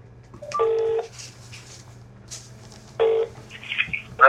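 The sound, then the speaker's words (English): A phone on loudspeaker dials out to call someone at work: two bursts of electronic dialing tones, each about half a second of steady stacked beeps, separated by a quiet pause, with a faint low hum underneath and a brief chirp near the end. “So we're going to make a phone call”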